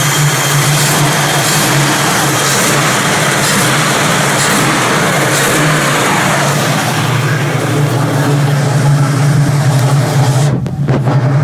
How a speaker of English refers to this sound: A sound of a SS69 Camaro, 350 small block, standard steel heads, my summer baby.